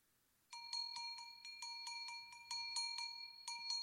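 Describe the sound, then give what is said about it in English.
A bright metallic cowbell clanks repeatedly in an uneven rhythm, ringing clear with sustained tones between strikes and no voices present. “So many bells. That was cowbell.”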